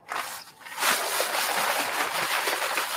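Water pours and splashes steadily into a dry mix emptied out of its bag, with no mixer, a continuous sloshing hiss that starts after a brief quiet moment and carries on to the end.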